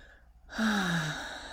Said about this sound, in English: So let me clear my throat here. So sorry. Okay.